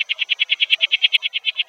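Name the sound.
frog calling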